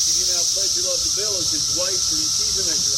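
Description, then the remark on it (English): Loud cicadas, which surface every 17 years, buzz at an outdoor wedding in a continuous, high-pitched shrill drone that never lets up and drowns out the band, with fainter melodic vocal sounds wavering underneath. “Their buzzing is so loud, it drowns out the band.”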